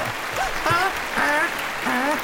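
A group of children booing, with several drawn-out, wavering voices overlapping in quick swells against a steady crowd murmur, fairly loud.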